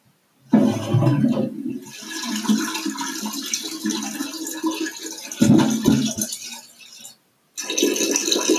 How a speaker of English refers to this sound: And again, somebody walked away with the toilet flushing. And they didn't skip a beat.